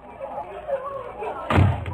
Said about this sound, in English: And as Jim Anderson steps through the front door, we can't be quite certain as to whether or not he approves.